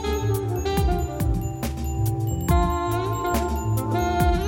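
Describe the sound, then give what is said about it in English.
Synthesized bell tones with the end of the amplitude envelope removed, giving a clipped, shortened decay, ring out in a repeating pattern over a steady, thumping electronic beat and sustained synth notes, with no one speaking. “Let's change the amplitude envelope of this bell.”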